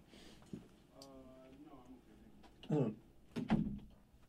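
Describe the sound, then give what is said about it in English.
A studio door is handled: a soft knock, a brief creaky groan, then two heavier bumps and thuds as it swings shut and latches, moderately loud. “I think I'll open the studio door, but I think I'll close it.”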